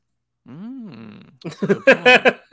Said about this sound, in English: A solid wet fart? Not a good one. Wet fart? Might help.